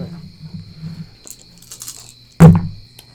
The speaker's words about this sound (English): Pick up your dice and roll them.